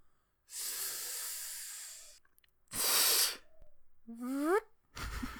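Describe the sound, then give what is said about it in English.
A voice imitates a zip being pulled down: a long breathy hiss, a shorter sharp burst, then a quick rising squeaky whoosh and a final short rush of air. “The sound of a zip going down.”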